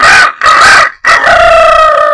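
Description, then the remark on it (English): A voice imitates a rooster crowing: two short clipped bursts followed by a long, drawn-out cock-a-doodle-doo that holds steady and loud. “Can I do the rooster? All right. Go ahead. Do the rooster.”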